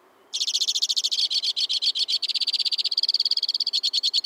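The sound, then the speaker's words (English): A white-winged crossbill sings from the tip-top of a black spruce in winter, a long, rapid-fire series of high trills and chattering notes, shifting between several fast repeated phrases without pause, loud and clear with no talking. “From the tip-top of a black spruce, a white-winged crossbill sings a rapid-fire tribute to winter.”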